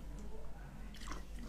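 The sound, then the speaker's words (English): Someone drinking water: soft, wet mouth and swallowing sounds, a brief cluster of quiet gulps over a low steady hum, with no talking. “Let me drink some water.”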